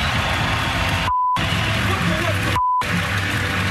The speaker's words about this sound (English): Here's a little bit of that audio of the Lightning players going back into the tunnel. And, of course, it's beeped out, though. But this went off live, actually, on the air.